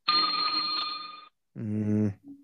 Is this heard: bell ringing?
yes